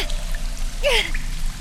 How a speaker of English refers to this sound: But the water! The current's washing me away!